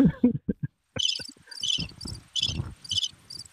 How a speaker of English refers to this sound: Can you hear the birdies? Yes. Or is that crickets? Okay. It might be crickets.